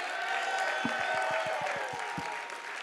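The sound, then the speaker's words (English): An audience applauding themselves for their work at the big event, The Awakening, with a dense wash of many hands clapping at once and a few sharper individual claps standing out in an uneven rhythm, no voices heard. “Give yourself a clap.”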